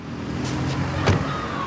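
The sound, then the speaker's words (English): People climb out of a car on a busy two-way street in Mexico where police are at a crime scene: a few clicks and a sharp door latch pop over a steady low vehicle rumble, with a faint whine from passing traffic. No one speaks. “We get out of the car, and it's this busy two-way street with a strip of grass down the middle, separating the lanes.”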